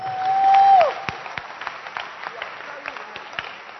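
An audience at a large church service claps in a dense, uneven round of applause for the pastor, with sharp individual claps over a steady crowd murmur. A brief, steady whistle-like tone sounds at the start.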